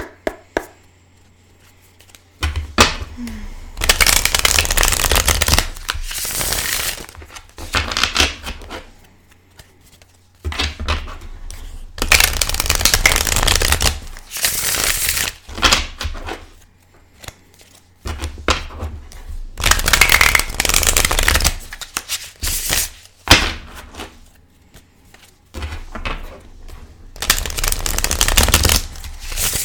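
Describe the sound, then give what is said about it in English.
A deck of tarot cards with duochrome silver edges being shuffled in several bursts of rapid riffling and sliding, separated by brief pauses, with no one speaking. “Anyway, let me give us a shuffle and we'll see what comes up.”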